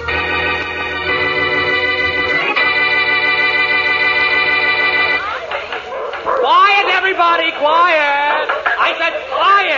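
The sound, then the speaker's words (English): A sustained brassy chord rings out for about five seconds, then gives way to a loud, overlapping chorus of yapping, yelping dogs barking at the 15th annual dog show as best of show is announced. “We've now come to the high spot of the 15th annual dog show, as the Kennel Club proudly announces the best of show.”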